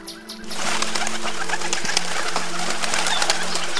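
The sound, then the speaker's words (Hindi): A flock of green parrots at a riverbank chatters and screeches nonstop, the dense overlapping calls swelling in after a brief quieter start and staying loud throughout. “हाथी और हिरनों के जाने के बाद वहां पर हरे तोतों का एक झुंड आया।”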